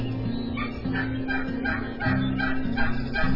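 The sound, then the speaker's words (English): A turkey gobble call: a fast, rattling burst of throaty notes repeating in quick pulses, fairly loud, over a steady low hum with no one talking. “The Texas Best Western Premier Hotel there in Bryan, College Station, is hosting the Texas State Turkey Calling Contest.”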